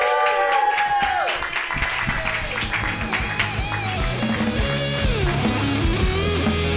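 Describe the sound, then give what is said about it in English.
Steady audience applause at the Pantasis Comedy Clubhouse on a Friday with a full house, following a comedian's set, with cheering voices mixed in, dense clapping at a constant loud level throughout, with some whoops and shouted tones rising above the crowd noise. “you guys keep clapping.”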